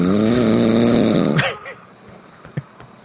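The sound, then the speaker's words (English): Two people imitate snoring: a loud, drawn-out buzzing snore for over a second, then quieter snorting and breathy sounds with a couple of short pops. “So yeah, it's us snoring.”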